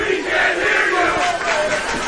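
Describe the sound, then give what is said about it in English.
A dense roar of crowd cheering from both student sections at a football game between Episcopal and Malvern, steady and loud throughout, with mixed shouting voices blending into a continuous wall of noise. “as the crowds start to get into both student sections.”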